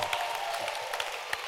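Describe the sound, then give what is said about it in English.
A church audience claps its hands together during a sermon in a dense, steady wash of applause, with a few sharper individual claps standing out above the crowd. “Can you clap your hands?”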